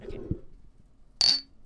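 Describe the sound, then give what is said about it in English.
A single bright clink of drinking glasses touching in a toast, ringing briefly with a high, clear tone before fading, after a few moments of quiet low background murmur. “Okay. There. Hear Cheers. That?”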